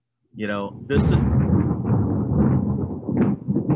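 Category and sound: nature, thunder rumbling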